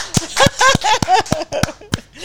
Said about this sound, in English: So I hit record, and now we're going to clap.